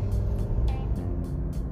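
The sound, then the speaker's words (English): Heavy road traffic at the beginning of rush hour rumbles steadily, a dense wash of engines from cars and larger vehicles with brief hisses and swells as vehicles pass, and no one talking. “It's at the beginning of rush hour traffic, and rush hour traffic on this particular road is ugly.”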